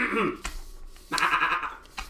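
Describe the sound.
A person imitates a sheep's bleat, a short nasal cry followed by a longer, wavering, tremulous bleat, fairly loud and with no other talking.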